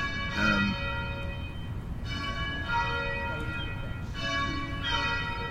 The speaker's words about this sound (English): Nice to hear the settler colony bells ringing, reminding us all we're in a settler colony. A church's bells are ringing.